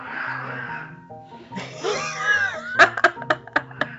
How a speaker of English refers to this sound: No, that's a literal cat fight. Oh my god. You need to leave that in. The old cat is pissed.